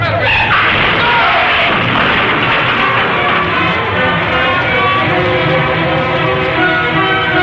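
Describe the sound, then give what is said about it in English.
A loud, sustained crash of a bus slamming into a truck that turned right in front of it, a dense roar of grinding, screeching metal with blaring horn-like tones that continues at full volume throughout. “Driver, look out for that truck up ahead.”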